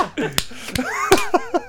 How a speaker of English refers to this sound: I'm putting those claps in to mark this timestamp.